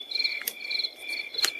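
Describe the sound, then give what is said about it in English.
Loud crickets chirp at night in dark woods in a steady, high-pitched trilling chorus that fills the whole stretch, with a couple of brief sharp ticks cutting through. No one speaks. “They were pitch black and silent, save for loud crickets.”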